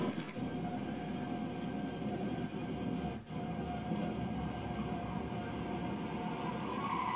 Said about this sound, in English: And it turns out that wonderful turbine sound was not part of the design spec. We put a tooth drive belt on the final drive, and it makes that kind of siren noise as it winds up, which was very helpful for the videographer.